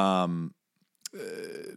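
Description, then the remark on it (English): Two loud burps, each a deep, throaty voiced rumble lasting about half a second, separated by a brief pause with a small click, with no talking. “It's been a while since we've really, podcast burp, synced up.”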